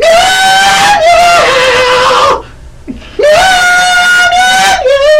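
A rock tune rendered in loud, wailing cat meows: two long, sliding, nasal phrases separated by a brief pause, the pitch rising and dipping with the melody.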